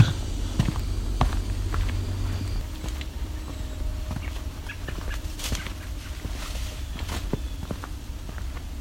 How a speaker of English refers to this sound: American robin. Several of them here. Mostly young ones.